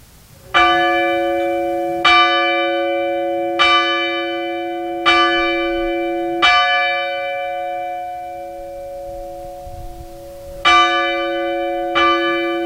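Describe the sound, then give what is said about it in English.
A fire bell is rung in the 5-5-5-5 signal: five slow, evenly spaced strikes, each tone lingering and fading, then after a short pause another series of strikes begins. Clear, with no talking. “Signal 5555 will be rung on the fire bell.”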